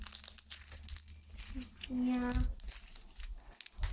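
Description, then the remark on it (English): Someone steps on a big pile of dry sticks that crackle and crunch underfoot in a steady run of brittle snaps, with a short voiced tone rising briefly through the middle of the noise. “I just stepped on a big pile of sticks, and it's so crunchy.”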